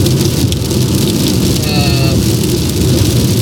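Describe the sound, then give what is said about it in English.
Steady, dense rain drums on a car's roof, a constant loud hiss with low pattering throughout, with a faint tonal squeak briefly rising over it midway. “I feel like I gotta talk louder because of the... Yeah, probably. Stupid rain.”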